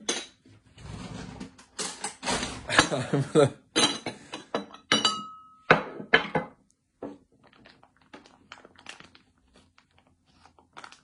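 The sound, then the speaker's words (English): Dishes and a bowl for microwaving food clatter and clink as they're handled, with a burst of busy knocks and scrapes early on, then sparser, quieter taps trailing off. “So I have the perfect bowl for that, actually.”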